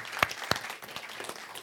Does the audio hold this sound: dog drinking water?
no